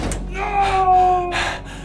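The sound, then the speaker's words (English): An elevator door in the VATEC Executive Tower, going down to the lowest level, grinds shut with a metallic, whining slide and ends in a firm clunk, fairly loud, with a low rumble underneath. “And watched the elevator door slam shut.”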